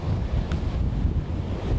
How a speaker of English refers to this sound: Wow! You won't be able to hear me. I'm dropping fantastic comedy here. And all you're going to hear is a rush of wind. And the occasional scream.